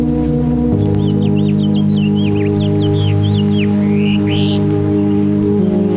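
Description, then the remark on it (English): A goldfinch sings a quick twittering run of high, bright notes for about three seconds, ending in two rising slurs, heard over a steady low hum. “The goldfinch you are hearing is a bird of the open fields or the edges of brushland.”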